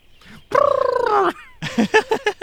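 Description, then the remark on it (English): A voice imitates a kelpie, a creature blending horse and water: a loud, drawn-out whinnying cry, a short pause, then five or six rapid, bubbly gurgling pulses in a choppy rhythm. “I really do like how you sort of blended the horse and the water together for the sound effect.”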